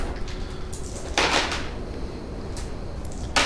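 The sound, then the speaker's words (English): Dice pools for the End of the World tabletop game, positive and negative dice, clatter across a surface in a short rattling burst, followed by a couple of fainter clicks as they settle, over a low steady background hum with no talking. “Okay, so we're going to roll these dice pools.”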